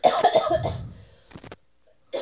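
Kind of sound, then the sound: human body sound, coughing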